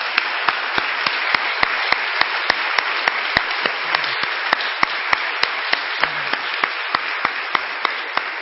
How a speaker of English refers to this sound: Would you give these people a round of applause?